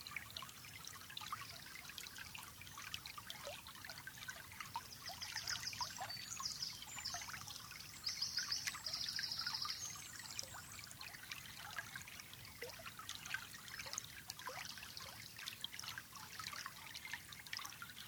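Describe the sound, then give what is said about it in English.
River water trickles and flows steadily in a continuous gentle babble, soft, with faint high bird chirps briefly joining in midway. “In calmness, you walk over to the river.”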